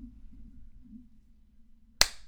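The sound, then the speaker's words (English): A single sharp hand clap rings out after about two seconds of near silence with a low hum, a bright, abrupt crack that fades quickly. “Feel free to clap whenever you...”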